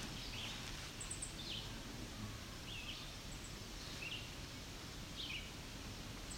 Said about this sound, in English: These are American red starts that are rattling. At least one female.